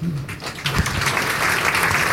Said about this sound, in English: I will also ask you to join me in a round of applause